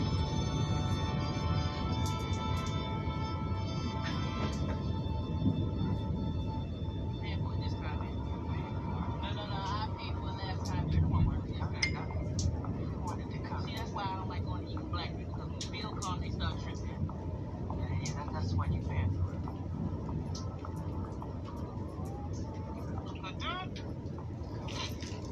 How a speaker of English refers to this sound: we're going to listen to some thunder in the background.